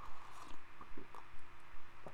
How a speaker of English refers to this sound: That reminds me, I'll join you here. I gotta take a sip.